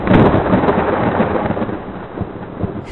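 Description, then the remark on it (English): A loud, rumbling thunder sound effect fills the moment, with a crackling crash at the start rolling into a sustained low roar that slowly fades, with no voices over it. “if you can have like electrical bolts or like lightning sounds play during this part, that'd be cool.”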